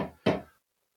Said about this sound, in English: He's putting in electrical boxes. Oh. They come with a nail in them, and you hold it up to the stud, and you hammer in the nail.